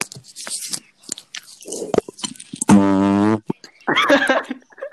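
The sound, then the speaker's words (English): A loud, buzzy fake fart sounds for under a second, steady and droning, framed by scattered crunchy mouth and handling noises before and after. “The fart. Was it real? No.”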